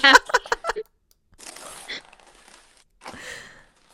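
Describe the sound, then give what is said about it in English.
Crisp crinkling of gift wrapping paper being torn open from a present and crumpled: a quick run of sharp crackles, then two longer rustling bursts with brief pauses between them. “Just toss the paper.”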